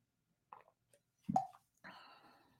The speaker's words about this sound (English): Let me take a sip of the water here.